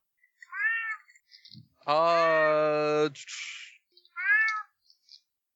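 A cat meows three times: a short rising meow, then a long drawn-out wail, then another short meow, with brief quiet gaps and no talking.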